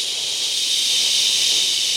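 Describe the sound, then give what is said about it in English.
A voice imitates running shower water with a steady, breathy hiss held evenly for about two seconds, with no words spoken. “I'll make the water noise.”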